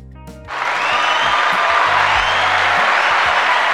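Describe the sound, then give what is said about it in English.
A burst of applause sound effect starts abruptly after a brief pause and continues as a dense, steady wash of clapping, loud, with low tonal hum beneath. “Turn that off. You don't get too much applause over here.”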